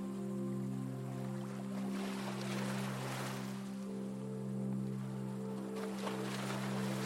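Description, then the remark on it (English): Small waves lap at the shore of a lake made choppy by the wind, in soft, rolling swells that rise and fade every few seconds, over a steady low droning hum. “And small waves are lapping the shore.”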